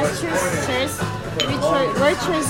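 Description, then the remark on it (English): Glasses clink together in a quick toast as people do shots at a birthday celebration, the bright chinks cutting through a lively cluster of overlapping voices chattering and laughing. “Cheers. They're doing shots.”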